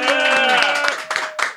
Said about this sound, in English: I want to hear your applause.